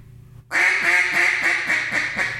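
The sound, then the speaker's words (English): A loud hen-mallard quacking done as a boss hen on a duck call: about seven raspy quacks in a steady, slightly descending cadence, starting abruptly after a brief quiet moment, with no talking. “It's unbelievable how ducky that boss hen is.”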